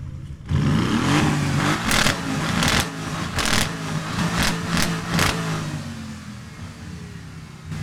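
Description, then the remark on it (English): A GT8R race car engine idles with a deep, steady rumble at a racing display, then a man inside revs it hard several times in quick, uneven bursts, each sharp roar cutting through before it settles back to a low growl. “And next to it, we have a GT8R, which a gentleman inside is revving the engine, and I'm hoping.”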